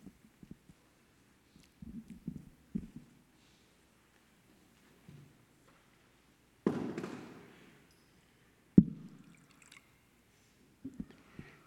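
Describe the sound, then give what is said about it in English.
Water from Maine, New England, is poured into a bowl at an audience gathering: a brief splashing pour that trickles away, then a second short splash, with soft clunks and handling noises around them. “This water is from Maine, New England, I don't know how to say it, Maine, where I visited my aunt this summer, and it rained a lot.”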